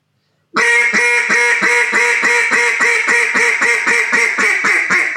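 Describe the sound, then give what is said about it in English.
A wooden timber-style duck call made of coca bowl wood, blown in a loud hunting-style hail call with rasp: a rapid, unbroken series of about a dozen raspy, evenly spaced quacks following a brief silence, with no talking. “But I don't know if you can hear this or not, but I'll do it on a – this is a timber style call, actually a coca bowl of wood.”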